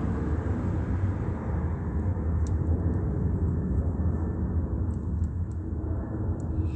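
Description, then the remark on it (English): A steady, heavy roar of an airplane passing overhead at 9:43 p.m. over 325 West G Street in Ontario, by Ontario International Airport, deep and rumbling, holding at a constant loudness throughout with no voices, only a few faint high clicks on top. “in the same way that it's rapidly taking off over 325 West G Street, it would have already been high in elevation”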